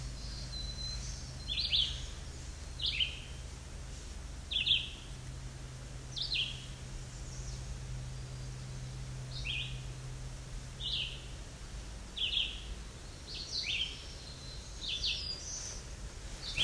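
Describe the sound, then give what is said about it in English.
A black-throated blue warbler sings a series of short, buzzy high phrases, repeating them every second or two over a steady low background hum. “Here we go, black-throated blue warbler.”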